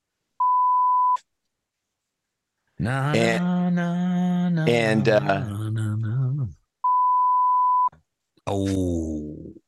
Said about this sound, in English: What is it? Bleep it out. Beep.